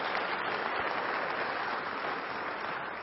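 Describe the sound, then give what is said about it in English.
Steady audience applause fills the whole stretch, a dense, even wash of many hands clapping at a constant moderately loud level with no voices standing out. “Yeah, you can applaud.”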